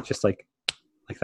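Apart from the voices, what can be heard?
finger snap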